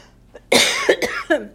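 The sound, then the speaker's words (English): A loud bout of coughing: one harsh, rasping cough followed quickly by two shorter coughs, with no talking in between. “Even when you're coughing.”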